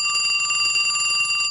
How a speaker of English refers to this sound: Okay, I seem to be getting a phone call. Hold on a second.